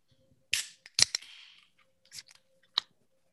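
Cola soda cans, including cherry cola, are cracked open during a cola taste test: a handful of sharp, bright pops spaced irregularly, one trailing into a short fizzing hiss, with no talking over them.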